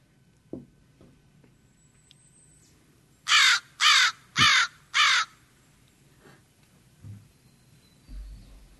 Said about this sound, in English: It sounds like a crow. It is a crow. Yeah, American crow. Yeah. Yeah. Which are probably one of the more intelligent birds.